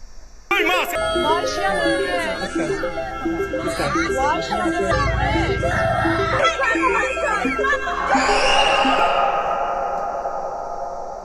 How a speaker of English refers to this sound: Hear that scream of terror from that little kid? He knows exactly what's going on.